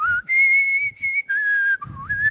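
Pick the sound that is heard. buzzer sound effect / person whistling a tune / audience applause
person whistling a tune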